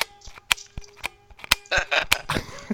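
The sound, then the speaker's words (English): A cheap wide pinhole camera shutter clicking repeatedly: sharp, loud mechanical snaps at irregular intervals, some with a brief metallic ring, giving way to rattly scraping near the end. “That is the worst sounding shutter I've ever heard.”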